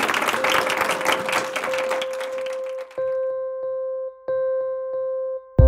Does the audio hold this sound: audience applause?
yes